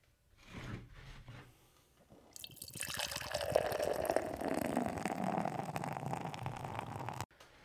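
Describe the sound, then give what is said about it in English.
A few soft clicks and handling sounds, then a hazy IPA from Great Notion Brewing Company pours steadily into a glass, a rushing, gurgling fill lasting several seconds before cutting off abruptly. “Let's get this fucking pour.”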